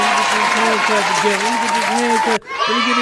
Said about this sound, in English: We got … in the building, man. Let me get this clap hand. Let me get this hand clap together.